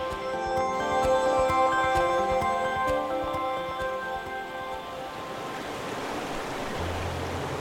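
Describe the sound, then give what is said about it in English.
Steady rushing water of the River Ribble at Mitton, not far from its confluence with the Hodder, a broad continuous wash of sound, emerges as tonal background music fades away during the first few seconds, then flows on alone at a moderate level. “Another important place for me on the Ribble catchment is here at Mitton, and again it's because of a combination of factors.”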